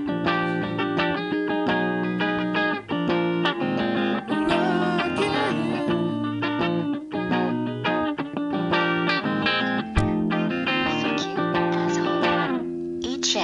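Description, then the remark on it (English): Harsh, distorted music that stutters and glitches throughout, with dense buzzy tones and a few brief dropouts, a song breaking up because of a bad internet connection and a poor modem. “Very your sorry, ladies and gentlemen, due to bad internet connection and a poor modem, the rest of the song cannot be continued at this time, because we are all roadkill on the information highway.”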